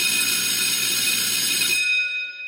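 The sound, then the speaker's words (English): A bell is hit for emphasis, ringing out loud and bright with a harsh metallic clang, its high ringing tones lingering and slowly fading after the initial burst. No one speaks. “Let me hit the bell on that.”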